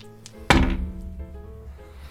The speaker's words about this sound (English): I'll roll a dice on my end.